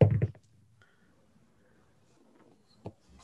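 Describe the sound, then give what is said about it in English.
Dice rolled for a strength check in a tabletop game clatter across a hard tabletop in a quick burst of several sharp clicks, then settle into near silence before one last crisp knock, landing on a 6. “Where's my dice bag? These are getting retired for the night. That was a 6.”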